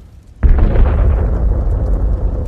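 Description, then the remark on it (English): A sudden, massive explosion as a plane crashes into an office tower at 8:05 in the morning bursts in after a brief quiet moment, then gives way to a heavy, sustained rumbling roar that slowly fades but keeps going. It is very loud, with no voices. “And now come crashing into our tower.”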